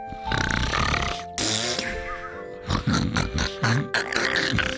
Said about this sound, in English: When King Cranky Pants reached Rosie's farm, he found Bibble on the bench in the sun, snoring loudly.